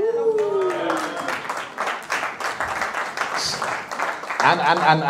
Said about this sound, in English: You're slow with the clapping, but I'm going to catch you right now.